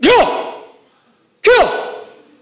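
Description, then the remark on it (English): Two sharp martial arts kiai shouts, loud, each a short forceful vocal burst with a quick rising-then-falling pitch and a trailing fade, separated by a brief silence. A voice imitating the shout. “you're familiar with the kia or the kia. It's that noise, that shout, right?”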